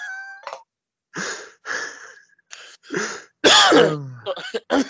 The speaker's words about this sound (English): Some cough just came up.